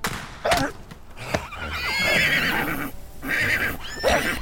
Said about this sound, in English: a sharp pain accompanied by the faint report of a rifle makes you jump, causing the horses to whinny and dance.